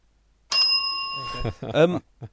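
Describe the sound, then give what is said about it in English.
A single bright synthetic bell sound effect dings out clear, its tone sustaining for about a second before voices start talking over its fading tail. “Where's my bell? But I thought James Lang at Harlequins played really well. Use your synthetic bell.”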